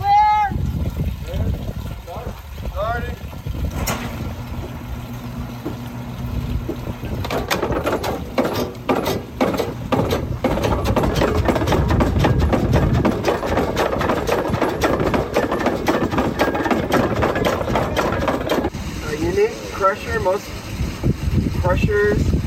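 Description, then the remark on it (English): A stamp mill's stamps, working like upside-down pistons, pound away at ore on a windy day with a rapid, steady series of heavy crushing thuds over a loud mechanical rumble. People talk briefly before and after the pounding. “here's 10, think about it as, you know, an upside down piston, if you will. That's what's crushing the ore.”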